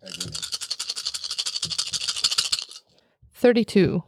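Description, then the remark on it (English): A rapid clatter of dice rolling and rattling across a table for a couple of seconds, fairly loud, as a player makes a roll with two added dice, followed by a brief pause and then a voice speaking. “So you get to add two dice to your roll.”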